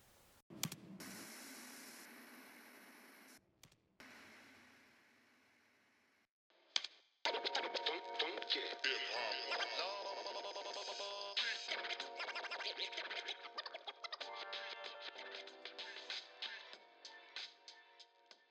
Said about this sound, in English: I hope you guys enjoyed this week's episode. Cue the static.